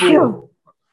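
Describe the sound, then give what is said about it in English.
A single loud sneeze bursts out and fades within half a second, followed by near silence. “Bless you.”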